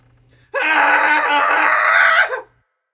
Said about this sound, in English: keep the week moving, keep the day moving with another cathartic scream.